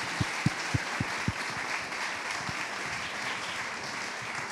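A crowd applauds a reader after a winning story is read aloud publicly, a dense, steady wash of clapping, a few sharp, louder claps standing out at the start before settling into even, sustained applause.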